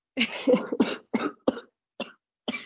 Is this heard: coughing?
yes